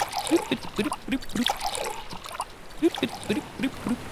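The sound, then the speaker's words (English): Seawater is poured into three glasses at a table on a ship, trickling and splashing in short bursts, with a brief pause partway through before the pouring resumes. No one speaks. “Let me get you some water.”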